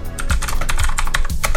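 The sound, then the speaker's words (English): Rapid, loud clacking of keys on a mechanical keyboard as someone types a web search for Hot Topic stores in Canada, a dense run of sharp clicks with no one speaking. “The fucking mechanical keyboard is so goddamn loud.”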